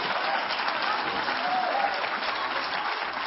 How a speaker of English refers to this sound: Give him a hand clap, somebody.